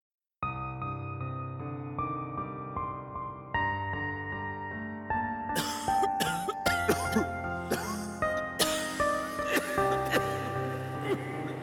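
Dry, harsh coughs burst out repeatedly in the second half, fairly loud, over a steady background of sustained musical tones that plays alone at first.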